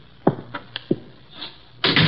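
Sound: door swinging open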